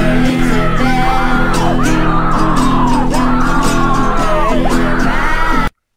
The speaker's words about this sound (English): There's yelling and screaming in the background, right? Like there's like weeping and gnashing of teeth.